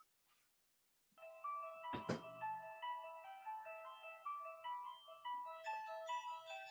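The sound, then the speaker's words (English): The theme from the film The Exorcist, played from a phone: an eerie, repetitive chime-like melody plays tinnily through the small phone speaker, steady and fairly loud, with a brief thump just after it begins; no one talks over it. “I mean, that's some creepy ass music for sure.”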